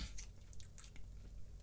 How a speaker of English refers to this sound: Damn, you still chewing. Damn.